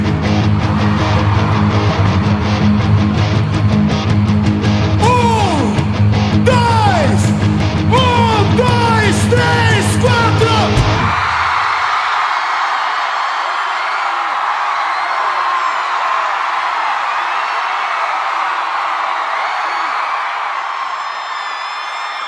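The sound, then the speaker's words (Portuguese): A large concert crowd yells and whoops over loud live music; the band stops abruptly and a sustained roar of shouting and cheering carries on alone, slowly fading. “gente vai parar. E vocês gritam, ok?”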